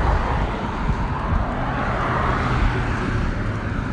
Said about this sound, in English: The cars are out, even though you're doing math in your head right now. You can hear the cars, guys.